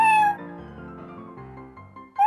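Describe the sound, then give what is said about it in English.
A loud cat meow at the start, from the cat character Tabby Flubberwinkle of the show Tabby Flubberwinkle, Cat's Private Eye, trails into a low sustained musical backdrop, then a second short meow rises sharply at the very end. “I'm a cat.”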